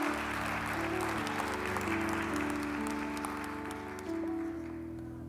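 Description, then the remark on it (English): A church audience claps in praise to God after a prayer, steadily throughout, a dense wash of applause over sustained keyboard chords that shift a couple of times before the clapping thins out near the end. “Come on, give God another hand clap of praise.”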